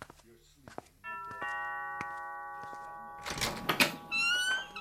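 A doorbell chimes with a bright, sustained ringing tone that holds for a couple of seconds and slowly fades, followed by a burst of clattering and shuffling noises.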